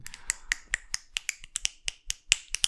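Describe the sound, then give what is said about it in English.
A rapid series of sharp, crisp snapping claps made with one finger and just one hand, about a dozen bright cracks in an uneven quick rhythm with no voices. “I can clap with one finger and just one hand.”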